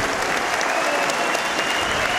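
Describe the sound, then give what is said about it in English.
A large football stadium crowd applauds steadily as Elliot Lee is substituted off for James Jones, a dense wash of clapping that stays loud and even throughout with no voices standing out. “I had to give him a clap, because Elliot Lee has been sensational today.”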